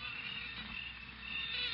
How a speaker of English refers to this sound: Quiet and still. Can't hear anything but the crickets.